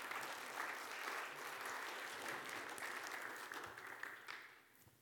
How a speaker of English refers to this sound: Thank you, Bell Choir. If you enjoyed the Bell Choir today, would you just give them a round of applause?